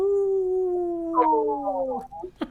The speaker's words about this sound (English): Yeah, my dog howls along with police sirens. Every time a police siren goes past.